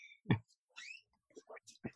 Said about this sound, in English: Hold on, I'm going to take a sip first, I guess. Okay.